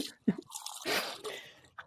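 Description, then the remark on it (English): Liquid glugs as it is poured, a short run of irregular, hollow gurgles and a brief splashy rush, fairly quiet, ending with one last small glug. “I love the glugging sound. I didn't know if you could hear that or not.”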